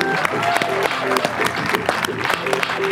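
Steady applause from an audience at a Visit Charlotte morning event fills the space, a dense patter of many hands clapping continuously at a fairly loud level, with scattered voices and a few short whistle-like tones mixed in.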